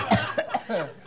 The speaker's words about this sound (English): Are you coughing because all the oxygen's gone?